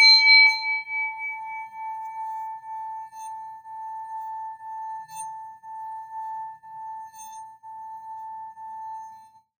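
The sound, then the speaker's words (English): A singing bowl is struck once, giving a clear metallic strike followed by a long, steady ringing tone that hums with a gentle wavering pulse as it slowly fades, with no voices present. “So if any of those affirmations resonate with you, I want you to focus on that as I ring my singing bowl.”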